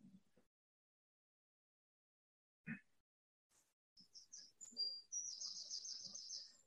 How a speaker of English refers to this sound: Birds are chirping. Sounds like spring, but it looks like fall.